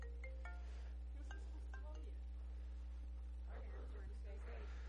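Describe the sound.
A cell phone ringtone plays in church on a Wednesday night at 8 o'clock, a short electronic melody of bright tones repeating three times over a steady low hum, followed by faint voices murmuring in the background.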